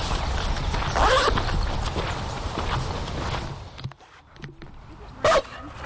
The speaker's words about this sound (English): Whoa, loud. Hey buddy. Crazy dogs. They're just excited.